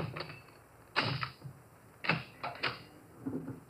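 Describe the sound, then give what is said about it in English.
Skeleton keys scrape and rattle in a locked door lock as someone tries to open it: a handful of sharp metallic clicks and jiggles at uneven intervals, with quiet pauses between and no talking. “He's reformed, so he gave me all his skeleton keys.”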